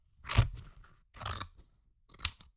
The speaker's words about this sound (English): It was me cutting a Toy Story 3 picture apart.